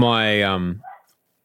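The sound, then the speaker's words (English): A dog barks at a home podcaster's house: one loud, drawn-out, tonal bark lasting under a second, followed by a brief fainter yelp, then quiet. No one talks. “That's the background chorus of the home podcaster.”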